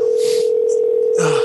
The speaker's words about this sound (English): It's ringing at least. This one's actually ringing, so we're actually making steps forward here.